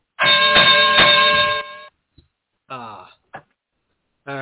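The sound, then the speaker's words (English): A bell rings out with a bright, sustained metallic tone lasting about a second and a half before fading, followed by brief bursts of someone starting to speak. “bell please.”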